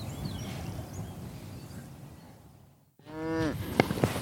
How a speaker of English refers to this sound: But before then, I'm going to drop down to the field in front of me where a lot of the other cattle are gathered, just to have a closer look at them because they do such important work up here.